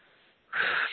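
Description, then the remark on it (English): A single deep breath: a soft, airy rush that swells suddenly halfway through and holds steady before easing off. No one speaks. “And you'll hear me either breathing or snapping my fingers.”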